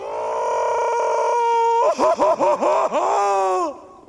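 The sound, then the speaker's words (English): The cartoon character Patrick's loud, drawn-out scream, holding one strained pitch before breaking into rapid wavering yelps and ending on a long sustained wail, continuous for about four seconds with no other talk. “This one is a Patrick scream.”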